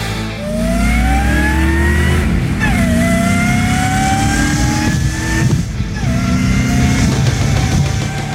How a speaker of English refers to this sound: Did I tell you I was going to give you more supercharged V8 sounds? I might have forgot to tell you that.